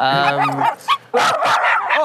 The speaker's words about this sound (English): All right, fuck off with the fucking dogs.